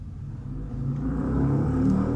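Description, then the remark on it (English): A neighbor's truck drives past outside, its engine a low, steady drone that swells gradually louder over a couple of seconds, with no talking. “Now, there's my neighbor driving by with a truck like that.”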